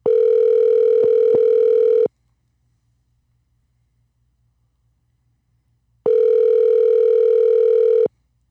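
A phone line tone as an outgoing call is placed to a listener: a steady, mid-pitched electronic hum sounding for about two seconds, briefly clicking twice, then a long silence before a second two-second burst. No one speaks.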